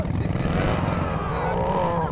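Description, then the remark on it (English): A motorcycle engine roars steadily outside a church, a deep rumbling drone with throaty low-end pulses that holds constant for a couple of seconds, loud and unbroken. “There was the roar of a motorcycle outside the church.”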